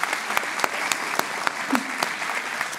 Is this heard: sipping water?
no